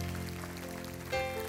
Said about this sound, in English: Give him a hand clap.